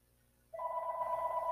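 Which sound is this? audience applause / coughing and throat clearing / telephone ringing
telephone ringing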